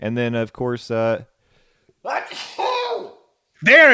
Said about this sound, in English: Excuse me while I sneeze. Come on. It's right there. Oh, you got to sneeze now. Look into a light. There. Okay, it's gone.